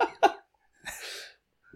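Two quick, sharp hiccups together, then a longer breathy gasp and a faint final catch. Fairly loud, with no talking.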